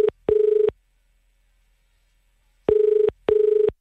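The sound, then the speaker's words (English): A call from an office phone rings down the line in a double-ring pattern: two short buzzing pulses, a two-second pause, then another pair. The tone is steady and clear, with no voices. “I'm just ringing from the office phone, so that's probably why you didn't realise it was me.”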